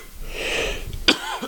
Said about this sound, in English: Damn, I hit that vape pretty deep. Now I'm coughing, too.